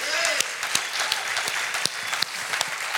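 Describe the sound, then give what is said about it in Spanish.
An audience applauds steadily, giving a round of applause to the Lord: a dense wash of clapping with sharper individual claps popping through, plus a few faint cheers rising above the crowd. “Tú le puedes dar un aplauso al Señor por ello.”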